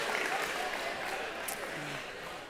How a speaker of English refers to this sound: All right, give yourselves a round of applause.